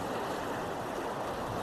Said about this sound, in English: if you're at the campground here, you can actually hear the waves